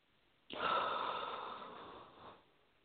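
A long, deep breath drawn in through the nose: a steady airy hiss that starts abruptly, holds for about two seconds, then fades out, with no talking.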